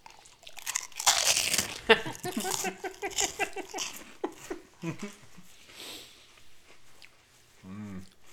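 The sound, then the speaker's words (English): Loud crunching of crispy pork rinds being bitten and chewed, a burst of crackly bites in the first few seconds followed by softer chewing and a brief voice near the end. “That crunch? That second one I just ate had a bunch on it.”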